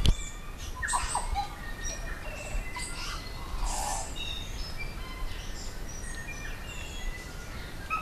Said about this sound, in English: Well, from dawn till dusk soon, pedestrians walking along Otepoti Dunedin's Central George Street will be serenaded by recordings of native manu, or birds, who dwell in the city's town belt.